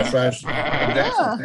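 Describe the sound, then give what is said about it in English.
A goat bleats loudly, a couple of quavering, wavering cries running together over about a second and a half with no pause for quiet; one of a herd of goats and rams hired to clear overgrown lawns in Southfield, Michigan. “in Southfield, Michigan, the police rounded up a herd of goats and rams that were hired to clear an overgrowth in lawns in Michigan.”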